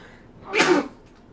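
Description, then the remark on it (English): A single sharp sneeze bursts out loudly, a quick explosive rush of breath lasting under half a second, with quiet background before and after. “God bless you.”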